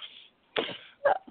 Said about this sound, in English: Sorry, I was coughing and sneezing again.